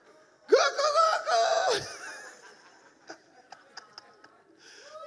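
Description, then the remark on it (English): A person's voice imitates a rooster crowing in one loud, strained, rising burst lasting just over a second, followed by quiet mouth clicks and soft swallowing sounds. “And you know, the sequence of cocks crowing is not very long.”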